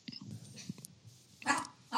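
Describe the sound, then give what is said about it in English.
The speaker's dog lets out two loud, sharp barks, spaced about half a second apart, after a stretch of low, muffled rustling and soft background noise. “oh no, my dog is barking.”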